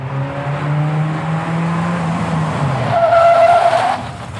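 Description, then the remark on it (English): A car's tires screech loudly as it brakes hard, a rising engine whine giving way to a high, sustained squeal that cuts off abruptly near the end. “The car screeched to a halt.”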